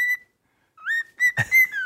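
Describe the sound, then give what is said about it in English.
A pet bird named Bird, also called Party Chicken, whistles a clear, high held note, falls silent briefly, then lets out a quick run of sliding, warbling whistles punctuated by a short raspy burst. No one talks. “Good job, Bird. Good job.”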